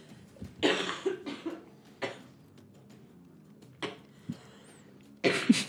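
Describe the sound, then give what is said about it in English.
A man coughs harshly several times in a ragged series, with wet, strained bursts separated by short pauses and a final heavy cough, fairly loud, with no talking. It is the character Halleck coughing on the floor as his wounds take him down. “You hear the Halleck from the floor coughing as his wounds are taking him down.”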